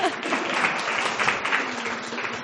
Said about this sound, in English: We're super excited. Yeah, we can clap. Woohoo!